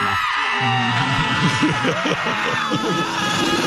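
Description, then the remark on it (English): A large crowd of fans screams and whoops continuously, a dense wall of overlapping shouts and cheers that stays loud and steady from start to finish. “Cue the people screaming.”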